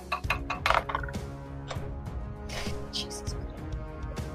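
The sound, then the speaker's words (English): Someone mimics a beak tapping on glass: a string of sharp, bright clicks and clinks in an uneven rhythm, with soft voices murmuring underneath. “Yeah, I'm just going to make a sound like a beak tapping on glass and swing at it again.”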